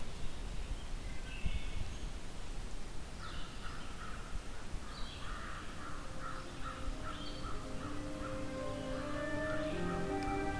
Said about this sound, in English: In fact, there's a crow about 10 times further away right now that's louder than it is, probably.